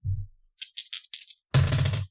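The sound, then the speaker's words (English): Two dice are rolled for an event on an event table, rattling in a few quick, bright clicking bursts, then landing with a louder, fuller clatter that tumbles for about half a second before stopping. No one speaks. “So you roll 2 dice.”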